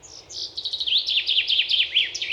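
Birds chirp and tweet in a quick, continuous stream of high, warbling notes, clear, with no voices.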